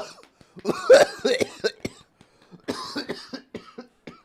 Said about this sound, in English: Sorry, everyone. And the whole crowd kind of waits for this lone coughing to stop.